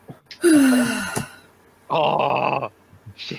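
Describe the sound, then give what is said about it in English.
A person imitates snoring with two loud, raspy, breathy bursts, like a drawn-out inhale followed by a rattling exhale, separated by a brief pause. “Norton gets to snore really quickly.”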